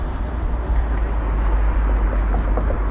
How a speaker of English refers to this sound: Just crossing the tram lines now. No trams. That's good. Hope the traffic noise isn't too bad here.